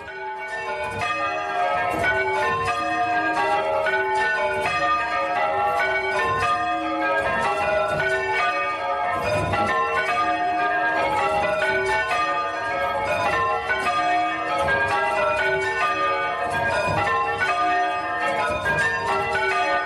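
Eight church bells ringing Stedman triples at St. Mary the Virgin Church in Ullenhall, a tiny village, peal continuously in a dense, overlapping cascade, loud, with a sour, out-of-tune clash because two of the bells are mistuned, one extremely so.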